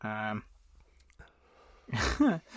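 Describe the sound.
A person yawns, a long breathy exhale sliding down in pitch, preceded by a short voiced sound and a quiet pause.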